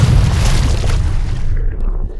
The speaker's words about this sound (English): Lightning is static electricity on a very large scale. The charges build up and are discharged down to the ground or whatever object is there in the way.